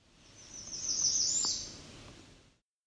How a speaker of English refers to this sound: This was an American Redstart.